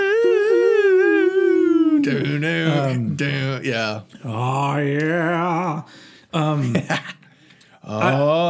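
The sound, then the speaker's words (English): A voice imitates the man-snoring meme, a widely used TikTok sound effect: a long, high, wavering whine followed by several lower, throaty voiced bursts with brief pauses between them, loud throughout. “There's a meme of a dude snoring. It became like one of the most used TikTok sound effects of this year.”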